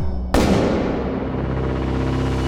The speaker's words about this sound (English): A gunshot echoed through the mansion's halls.